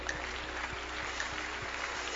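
An audience claps their hands in a dense, steady wash of overlapping claps, fairly soft and continuous for about two seconds, with no voices standing out.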